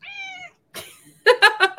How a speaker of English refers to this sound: Nobody wants to talk to my cat. My cat's going to just come talk to me for a little while.